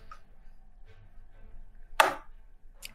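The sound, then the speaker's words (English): Norse Foundry dice clatter across a table in one sharp, bright burst of clicks, followed by a brief second rattle, with a few faint ticks beforehand and no talking; a roll made with advantage. “Let me just use my Norse Foundry dice.”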